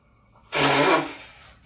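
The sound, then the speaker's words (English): A single forceful nose blow: a loud, rough, hissing burst lasting about half a second, then tapering off into quiet. No one speaks. “I'm going to blow my nose on a podcast”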